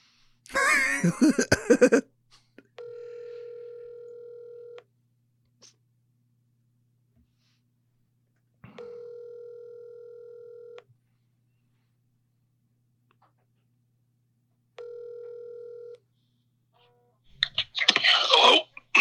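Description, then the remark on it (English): A brief burst of dialing noise, then a telephone ringback tone sounds three times, each steady ring separated by long silent gaps, ending in a rustling click as the line picks up. “Let's see what happens, if he's still available to answer the phone.”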